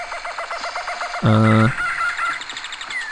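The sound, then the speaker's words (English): Loud, busy bird calls chatter continuously, with a brief deep honking burst in the middle that sounds like a goose or other large fowl. “I think that joke, that terrible joke, would have been slightly more bearable to listen to if the bird noises in the background hadn't been so oppressively loud.”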